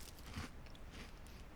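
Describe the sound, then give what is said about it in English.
A crisp bite into a crunchy Pepperidge Farm Farmhouse chocolate chip cookie, followed by a few dry crunching chews, loud with no talking. “Is it a chocolate chip cookie? Yeah.”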